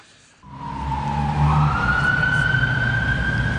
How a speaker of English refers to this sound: I'm walking just outside our studios in New Broadcasting House, and as you can hear, the traffic is pretty busy.